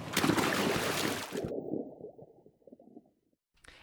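A loud splash as someone does a cannonball into a hot tub with its bubbles on, the broad rush of water cutting off sharply and giving way to low sloshing and gurgling that fades away.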